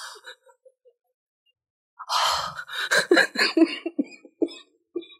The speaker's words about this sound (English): I'm dying. And she's coughing.